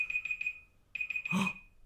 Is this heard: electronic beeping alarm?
yes